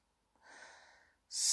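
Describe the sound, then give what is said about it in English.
A voice imitates hard sniffing, as of someone unhappy and about to cry: one long, breathy, snuffly inhale, fairly soft, then a sudden sharp hiss right at the end. “She walked over to the window seat and sat there, sniffing hard.”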